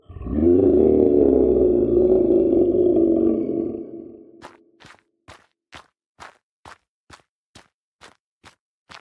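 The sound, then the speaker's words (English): A deep, rumbling monstrous roar of a shouting creature sustains for about four seconds, then gives way to a steady series of about a dozen sharp, evenly spaced footsteps crunching on gravel. “The creature shouts out again.”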